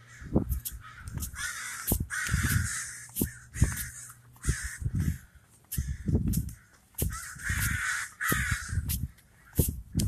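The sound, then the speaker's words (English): A flock of crows caw repeatedly and loudly, harsh overlapping calls coming in irregular bursts, with no talking. “All right, you fucking crows. Why are you making so much noise?”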